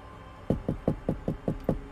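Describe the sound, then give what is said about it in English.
Seven quick knocks on a hard surface in a steady, even rhythm, clear with no talking, after a brief quiet start. “I remember before that Grandpa would give us the lollipops, he would give us the hug with the lollipops in his hand, but he would always be close to something he could knock on, just like this.”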